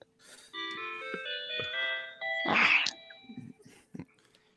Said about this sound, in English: What kind of sound chip do they use in those? That sounds great. Yeah. It's one of the Casio little keyboards. Perfect. It's 8-bit. You guys ever have one of those? It always sounds great. Remember the little toy, little Casio?